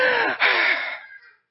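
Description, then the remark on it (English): A voice imitates the breathing of a tired swimmer doing the front crawl improperly, without rolling: two quick, harsh gasping inhales back to back, fading out, then a brief breath at the very end. Fairly loud, with no talking. “He was not rolling, so the breathing is not there and the technique is not there. So he's going like this.”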